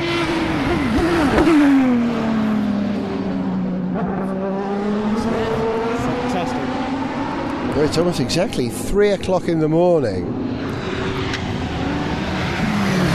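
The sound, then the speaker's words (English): Race car engines at the Le Mans race at night, including Corvettes, a Pescarolo and a 911, drone and rise in pitch, with several cars roaring past in quick succession near the end, their whining notes sweeping up and down beneath a man talking. “A bit of Le Mans at night.”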